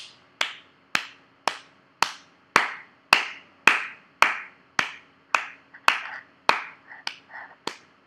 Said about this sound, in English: Been a while since we did a long awkward clap.